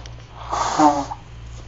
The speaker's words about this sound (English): And while you do that, I'm going to blow my nose.